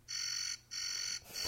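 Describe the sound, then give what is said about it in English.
An electronic backspace alert from a phone's dial pad sounds as loud, buzzy, high-pitched tones: two half-second blasts with a short gap, then a third starting, and no voices. “And then if you have to backspace, it goes like this.”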